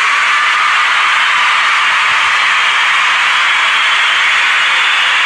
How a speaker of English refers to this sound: The crowd is very excited. Overwhelming. It's quite overwhelming. I really, we need a new crowd sound, man. That does sound terrible.